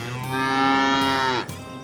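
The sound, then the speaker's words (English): A single long, loud moo from Bessie, a sick cow with lactose intolerance, with a rich harmonic, slightly nasal tone that swells, holds steady, then drops off abruptly, with no talking. “Since time immemorial, a veterinarian could give you a diagnosis for your sick cow.”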